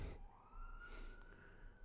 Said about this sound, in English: There's a siren going by.